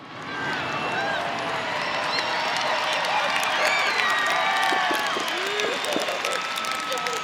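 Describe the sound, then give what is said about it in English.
A crowd breaks into sustained applause mixed with cheering and scattered whoops, a dense, steady wash of clapping and voices that holds for several seconds without letting up. “Big fucking applause.”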